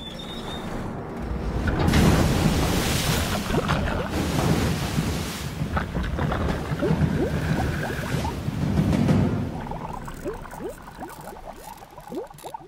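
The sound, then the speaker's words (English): About 4 tons (4 cubic meters) of water, dropped from a bucket at height, crashes down onto a car in a loud, roaring rush that surges twice, then breaks into splashing and trickling as it drains away. No one speaks. “Then beneath it, you'll see we've found a car for scientific purposes. Let's see just how much damage that amount of water can do.”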